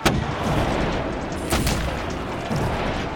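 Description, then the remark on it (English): Muffled explosions from several ships boom a few times over a steady, heavy low rumble, with one sharp burst at the start and another pair mid-way, as the ships begin to sink. “And from the other ships, you hear muffled explosions.”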